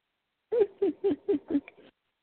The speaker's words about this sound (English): He's being squawky because it's time for birds to go to bed.